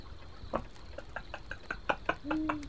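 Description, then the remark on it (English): An owl gives a rapid, jittery run of short calls, about a dozen in quick succession, ending with one drawn-out low hoot. The calls are fairly faint and there is no talking. “That owl's had too much coffee. She's having a wild time. Having a hoot.”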